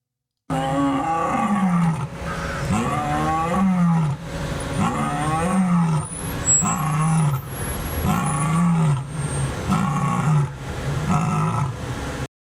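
A lioness roars repeatedly in a series of deep, loud, drawn-out calls, each swelling and fading in a steady rhythm, unaccompanied by any talking.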